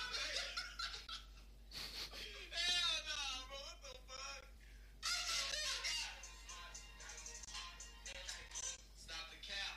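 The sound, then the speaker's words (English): A cat meows loudly and repeatedly, its wavering, drawn-out cries following one another with only brief pauses over about ten seconds. “Stop the cat.”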